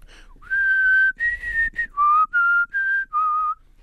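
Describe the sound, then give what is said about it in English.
Someone whistles a short, slightly breathy tune while eating, about seven sustained notes in a steady, deliberate rhythm, fairly loud and with no talking, during an eating-and-whistling contest. “We have a winner in the eating and whistling event.”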